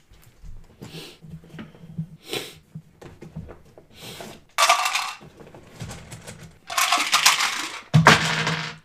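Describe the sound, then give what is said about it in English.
Dice clatter and tumble across a hard tabletop in several rattling bursts, the loudest near the end, as the game master rolls poison damage in a tabletop role-playing game. No talking. “Yeah, and I need a few more dice.”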